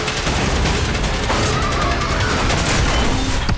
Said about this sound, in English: One of our crashes is here on this set, and we end up cannoning one of the BMWs through this building.